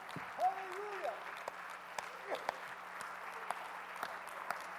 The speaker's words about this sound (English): Oh, let's clap our hands that we're alive tonight.